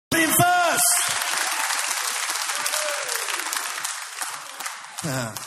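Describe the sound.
A crowd bursts into loud, sustained applause and cheering, with a few shouted voices at the start, fading slightly before a voice returns at the end.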